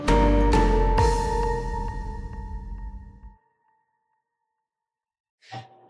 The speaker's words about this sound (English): Sorry, that's my kids ringing the doorbell 100 times. I'm sure you can hear that.